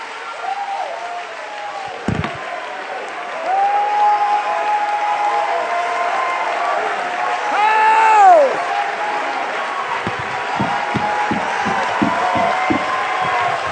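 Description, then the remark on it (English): A crowd claps and shouts together to recognize the King of Glory, in a steady, loud roar, with high cheering voices rising and whooping over the din and a burst of sharp rhythmic claps near the end. “If the world can clap and shout over sports figures, I think we can recognize the King of Glory because he's in the house.”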